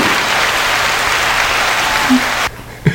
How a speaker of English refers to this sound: So let's just give a hand clap